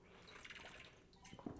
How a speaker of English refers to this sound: Speaking of some contenders, I don't want to gloat too much because this was my beginning of the season prediction, as I will take a sip of water for it.